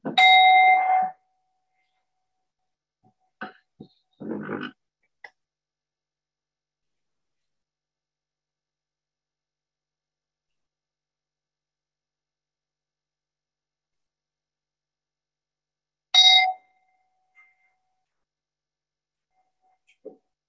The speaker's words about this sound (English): Can we have a bell? Just to take a pause to receive that.